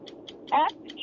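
A countdown clock for a trivia quiz question ticks in a quick, steady rhythm, about five sharp ticks a second. A brief, louder tonal burst cuts in midway over a low background murmur.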